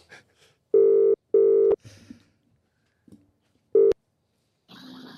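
A phone call being placed to ask someone questions about horse training: two steady, buzzy ringback tones in quick succession, a pause, then a third ring cut short, with faint clicks and rustles between and a brief noisy burst at the end.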